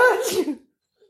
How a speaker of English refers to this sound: That was a ripping sneeze.